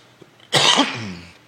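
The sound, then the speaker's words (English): A single loud, raspy cough, a harsh burst lasting under a second that trails off into breathy rasp, with no talking around it. “you're going to have to jump in here with some commentary, because I'm coughing up a storm here.”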